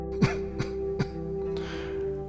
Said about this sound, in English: Umura coughed again.